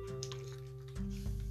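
Sounds of someone drinking water: soft wet sips followed by a couple of swallows, with a low steady hum underneath and no talking.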